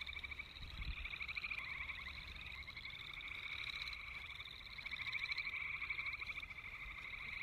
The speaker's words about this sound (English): Those are all frogs? Yeah, they are.